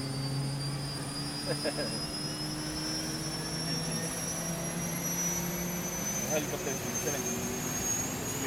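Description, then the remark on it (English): A Vietnam-era, 1970s American ex-military helicopter with its sliding door open rises into the morning air; its engine roars steadily, with a continuous whining turbine tone that slowly rises in pitch over a dense wash of rushing wind noise. “In the military helicopter with Felipe on the day three.”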